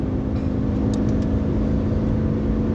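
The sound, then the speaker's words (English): Steady, loud road rumble from inside a car cruising at highway speed, weaving between semi-trucks, with a plow in the left lane and a broken-down truck in the right lane; low engine drone and constant hum, no voices, continuous traffic noise from heavy vehicles. “So I'm like ping-ponging between semi-trucks here.”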